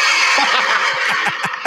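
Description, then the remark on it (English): Horses scream, whinny and neigh in a loud, agitated burst at the name Frau Blücher, several shrill cries tumbling one after another over a dense rushing wash of noise, with no one speaking. “Screaming horses.”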